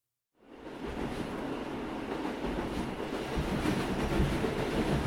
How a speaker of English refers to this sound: Greetings, sir, and pardon me for disrupting you on this fine lightning rail journey we find ourselves on.